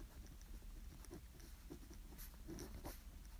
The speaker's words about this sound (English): If I don't write these things down mid-podcast, they won't happen, and y'all know that, so.